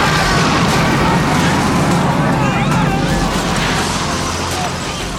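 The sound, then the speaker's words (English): A loud, sustained roar from a missile detonation explosion, a dense rumbling wash of noise that holds steady for several seconds with faint crackling and whistling tones and only a slight fade at the end. “Well, the missile fired. Detonation was confirmed.”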